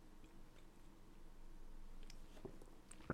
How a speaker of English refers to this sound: So I'll let you think about that here while I take a sip of some H2O, which is not at all a sponsor on this program.